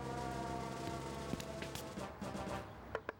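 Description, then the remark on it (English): A steady, sustained all-clear siren tone holds a level pitch for about three seconds, with a few sharp knocks breaking in near the end. No one speaks. “Oh, it's the all clear siren.”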